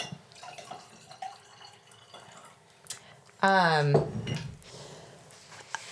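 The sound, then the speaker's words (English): A short pour of a little wine into a glass, its gurgle rising quickly in pitch for about half a second against faint background murmur. “Do you need some more wine? I'll take a little bit.”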